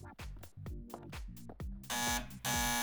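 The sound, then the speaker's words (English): A loud, harsh buzzer sounds in a quick run of short repeated bursts, then merges into a steady continuous buzz toward the end, with no one talking. “Is this buzzer working?”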